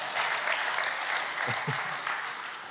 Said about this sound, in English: Can I just say, lots of people just ate bugs. Can we give them a massive round of applause? Well done.